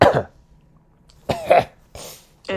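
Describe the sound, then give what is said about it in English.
Several harsh, loud coughs burst out in quick succession, with short pauses between each raspy hack, like a hard coughing fit. “hack up your left lung.”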